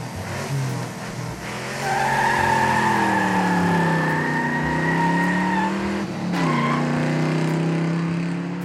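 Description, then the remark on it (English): A car's engine revs hard as tires squeal and skid, the high screech holding for several seconds before the vehicle roars away, loud with no voices. “Okay, I'll see you in the car.”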